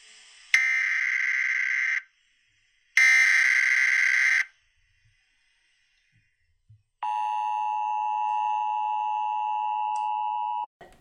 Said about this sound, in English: I'm speaking from the roof of the Prudential Building in downtown Boston. The sirens you hear are to warn the people to evacuate the cities as the Martians approach.